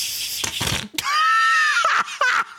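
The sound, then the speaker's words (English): A whoopee cushion with its tip dipped in bubbles, to mimic an underwater fart, gives a few noisy, spluttering bursts, then a thin, high, reedy squeal for nearly a second, ending in wet crackling sputters and pops as it blows a little bubble. “I'm going to dip the tip of the whoopee cushion in the bubbles. Yeah. Okay. To try and mimic the underwater fart.”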